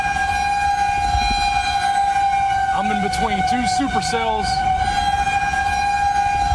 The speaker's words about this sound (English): One guy fleeing the storm captured the heart-pounding sound of sirens echoing across the landscape. That's an eerie sound when you hear that. Tornado sirens going off.